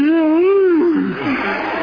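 A single long, voiced yawn: a wavering, moan-like tone that rises and dips in pitch, then trails off into a breathy exhale. It is fairly loud, and no one speaks.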